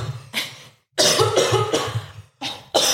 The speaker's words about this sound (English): just tried to take a sip of water and then kind of aspirated.